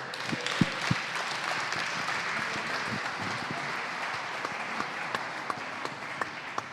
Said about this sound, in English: Keep the applause going until he gets up the stairs.